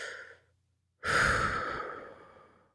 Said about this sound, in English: So you're in that sitting pose. Start your phone, the timer, close your eyes, and then just breathe in and out.